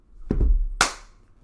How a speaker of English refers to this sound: No, you didn't have to clap. We had to clap that in case it sucks.